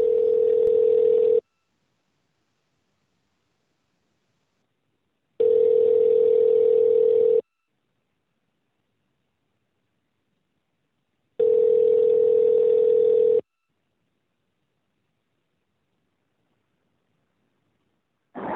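A steady telephone tone sounds while calling someone back after a disconnected call, in evenly spaced bursts, about two seconds on and four seconds off, repeating three times with a fourth starting at the end. It is clear, with no voices.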